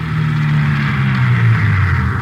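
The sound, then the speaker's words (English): A car engine hums loudly and steadily as police sergeants drive out to an address in the West Hollywood area, its low drone shifting slightly in pitch as if revving a little, with no one talking over it. “3:15 p.m., together with Sergeants Ullery and Bryant and 2 men from Metro Squad, we drove out to the address given us by Fred Norris.”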